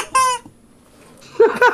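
Two loud, shrill squawks from a rubber chicken, a quick squeaky honk followed by a pause and a second wheezy, strained squeal, with no talking.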